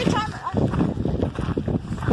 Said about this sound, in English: It's chilly. It's windy.